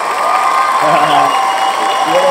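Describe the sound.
Excited group cheering, with several raised voices whooping over a steady wash of clapping-like noise, loud and continuous for a couple of seconds.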